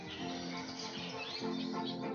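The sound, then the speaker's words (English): Soft, high chirps of a brand-new baby bird at the nest as it is about to take its first steps out, a few thin rising calls scattered over a steady, hazy background hum, fairly quiet. “In today's breathing space, the courage of a brand new baby bird when it's time to take those first steps out of the nest.”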